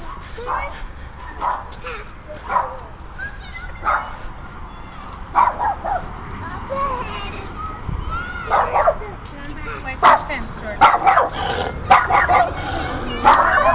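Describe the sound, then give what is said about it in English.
A small dog behind a fence barks repeatedly in sharp, yappy bursts, fairly loud, with a few whimpering yips between clusters of barks. “And another dog behind a fence. This is a particularly loud dog.”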